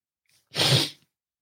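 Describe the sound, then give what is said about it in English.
A single short, forceful sniffle, a burst of rushing nasal air lasting about half a second, loud against otherwise silent surroundings with no talking. “Excuse me for the sniffle.”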